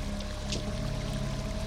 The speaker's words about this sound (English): you splash into this rushing river, going deep under the water for a second, realizing that this is a very deep river, before your body naturally pulls you back up to the surface